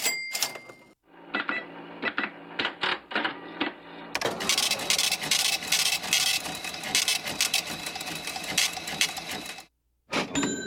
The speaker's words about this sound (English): There's no cash register activity. I kind of miss that. Let's play some.